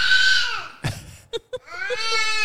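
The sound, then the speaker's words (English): A baby boy lets out shrill, happy squeals: a long wavering squeal, a couple of quick yelps, then another drawn-out high-pitched scream, with no talking. “He's very these vocal are today. Happy screams.”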